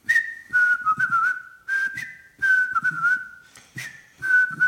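Someone whistles a simple tune in several short phrases, each a steady held tone with slight wavering, separated by brief pauses, clear with some background noise underneath.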